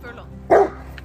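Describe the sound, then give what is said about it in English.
A single sharp dog bark rings out loud, a short burst over a low, steady background murmur. “Leave her alone. Dog.”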